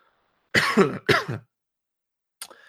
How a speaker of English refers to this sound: I totally forgot to mute my mic when I just coughed there. Sorry about that.